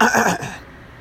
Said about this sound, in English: I had to clear my throat. All right, I had to clear my throat. That's as simple as that.